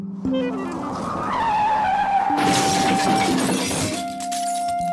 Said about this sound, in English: So one person might have a car crash.